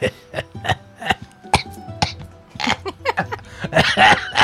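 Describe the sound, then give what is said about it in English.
A voice lets out a rapid string of short, raspy coughs and hacking bursts, fairly loud, building into a harsher fit toward the end, imitating the coughing of an old elf character. “See, my issue here is I don't know if that's you coughing no, or that's also him. Coughing.”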